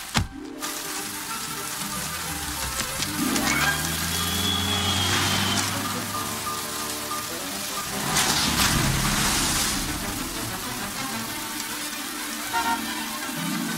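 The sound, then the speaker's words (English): Light rain sprinkling with a steady, soft crackling patter that swells slightly in the middle, while a low droning hum runs underneath. No one speaks. “Look, it's just sprinkling.”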